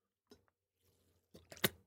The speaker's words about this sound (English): I need another sip of water. Getting a little raspy here.